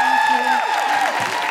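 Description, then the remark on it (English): An audience applauds a guest from Moan Zine, clapping steadily while loud cheers and whoops rise and fall over the clapping, the crowd noise staying strong from start to finish. “Big round of applause for Kat from Moan Zine.”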